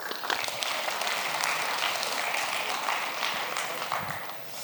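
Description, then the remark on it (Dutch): Steady applause from a crowd, a dense wash of many hands clapping at once, sustained and fairly loud throughout with no voices standing out. “Applaus.”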